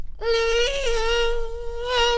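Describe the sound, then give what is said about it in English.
A person imitates a mosquito for a voiceover in a Raid commercial, with a sustained, nasal, high-pitched buzzing hum that holds steady for about two seconds, with a slight wobble in pitch partway through. No one speaks. “I got to be the voice of a mosquito in the latest Raid commercial. What does a mosquito sound like?”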